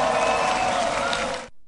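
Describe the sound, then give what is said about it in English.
Sustained applause from a large outdoor crowd filling a plaza in Poland on a cold day, after a speech by President Biden, a dense wash of clapping that holds steady and loud for over a second before cutting off abruptly. “There was a big crowd. I mean, it was cold and it was outside.”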